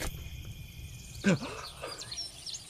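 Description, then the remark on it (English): Faint, scattered bird chirps and tweets on a cold, frosty morning sound over a low background hum, with a brief louder rising sweep partway through. “You are woken to the sounds of birds tweeting.”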